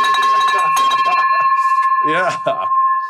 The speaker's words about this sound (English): First of all, we got to ring this bell for that.